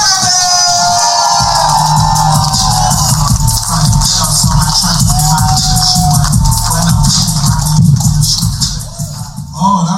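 A loud, steady wash of audience clapping and cheering runs for the full length, with high whoops at the start and a thumping low beat pulsing underneath. A comedy audience is welcoming comedian Marshall to the stage.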